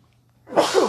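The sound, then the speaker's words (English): A single sharp sneeze bursts out after a quiet moment, a loud, breathy blast that lingers briefly before fading. “… is allergic to experimental hops.”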